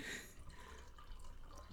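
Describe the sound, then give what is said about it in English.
Cold tea being poured from a small kettle: a faint, steady trickle of liquid lasting a couple of seconds, with a slightly louder splash at the start, and no voices. “Are you pouring something”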